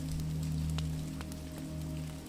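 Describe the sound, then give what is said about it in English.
Steady rain on a stormy night at Willow Cottage, pattering against a window pane: a soft continuous patter with scattered sharper drops over a low constant hum. No voices, just the even wash of rainfall throughout. “Rainy Night at Willow Cottage | Guided Sleep Story with Rain & Crackling Fire”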